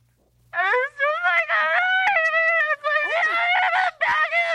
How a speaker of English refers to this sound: He's like, his head is down right now. He's so he starts just screaming into the air. He's just screaming, oh my God, my life's never going to be the same. Oh my God.